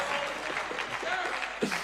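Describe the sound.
Scattered applause from the back row of an audience, a steady wash of many hands clapping at moderate loudness with some murmuring voices mixed in underneath.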